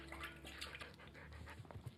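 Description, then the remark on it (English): A dog laps water from a toilet bowl, quick wet slurping repeating over a watery background hiss, fairly quiet, with a few heavier splashy laps near the end. “Nowadays, dogs better be careful drinking out of the toilet bowl.”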